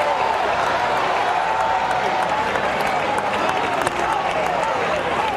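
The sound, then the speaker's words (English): A church audience claps and shouts in praise of God, a loud, dense wash of hand claps and voices without pause for the whole stretch. “He's worthy of your shout. He's worthy of your hand clap.”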